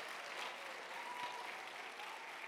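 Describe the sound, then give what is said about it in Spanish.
An audience at a morning worship service claps for God together in a steady, dense wash of applause that holds at an even, fairly loud level throughout, with no clear voices rising above it. “Si usted lo cree, dele palmas a Dios.”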